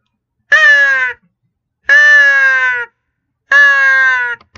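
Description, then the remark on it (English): Three harsh, evenly spaced caws blown on a crow call, a handheld call imitating a crow, in a room, each lasting under a second and sounding loud with no talking. “So one of the ways to get a shot gobble is to actually get a crow call. So I'm going to play it real quick.”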